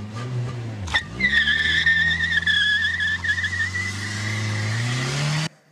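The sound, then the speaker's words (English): Car tires screech loudly and steadily for several seconds over a low, roaring engine as a car leaves a parking lot, cutting off abruptly at the end. No voices. “That was the sound of Brian this week leaving the parking lot.”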